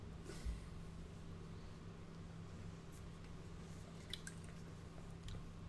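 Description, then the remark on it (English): Faint wet slurps and a few small liquid clicks as someone sips a rye IPA beer, scattered over a steady low electrical hum with no talking. “Let's give it a sip.”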